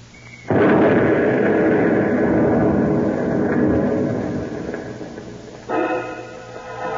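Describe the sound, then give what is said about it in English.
A sudden, loud explosion as a truck carrying explosives blows up, followed by a long rumbling roar that slowly fades, then a second sharp burst of noise near the end. No one speaks. “Shouldn't go near that exploded truck, Mr.”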